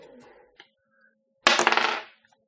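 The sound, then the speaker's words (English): A sudden clatter of dice rolled across a hard tabletop in a game, a quick rattling burst of about half a second that fades out, following a few faint background murmurs. “can you please roll the dice for me now?”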